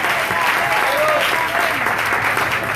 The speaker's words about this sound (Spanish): Ahí estará Jesús en esta noche. El aplauso fuerte porque Él está aquí en esta noche. Amén.